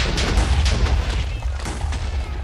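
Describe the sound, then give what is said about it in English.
A video game TNT explosion blowing things up rumbles loudly, a dense low boom with crackling debris rolling on for a couple of seconds, no voices over it. “Okay, that explosion was not what I was hoping for.”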